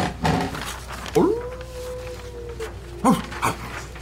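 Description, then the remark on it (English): A person's voice imitates the distant howling of a wolf pack in a forest of slushy, melting snow: a long, drawn-out howl that rises and holds steady for over a second, followed by a shorter rising howl, against faint background noise. “You have about 2 hours of travel into the forest, and you all immediately catch up and hear the sound of distant howling.”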